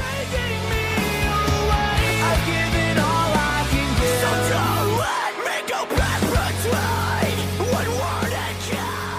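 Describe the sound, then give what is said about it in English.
A loud, dense rock song with hard screaming vocals over driving guitars and drums, briefly dropping out around the middle before crashing back in at full force. “Hard screaming, fucking light voice, just beautiful pitch, bro.”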